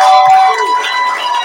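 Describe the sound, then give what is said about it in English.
A crowd at a religious gathering in Ibadan claps and shouts together, a dense, steady roar of voices and hands holding at a loud level for about a second and a half. “Give a little clap and a shout.”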